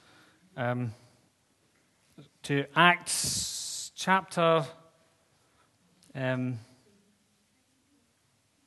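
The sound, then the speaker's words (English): A brief, crisp rustle of thin Bible pages being turned as the book is opened, one short burst sitting between spoken phrases. “If you want to just open your Bibles, I'm trying to open mine. You hear the pages rustling.”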